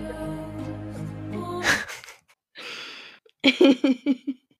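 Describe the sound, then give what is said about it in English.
A sleeping dog snores: a long raspy breath, then a quick run of short snorting, rumbling pulses, loud, with no talking. “By the way, my dog has fallen asleep behind me, so if you hear him snoring, it's not me.”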